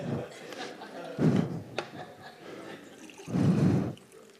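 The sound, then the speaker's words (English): Ethiopian coffee pours into a cup in two short bursts, with a faint clink between them; the pouring is fairly soft. “I didn't pour as much as I had intended.”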